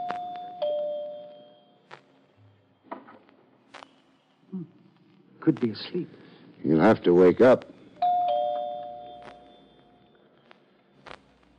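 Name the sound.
doorbell ringing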